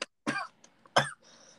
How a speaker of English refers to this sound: How … is coughing right now.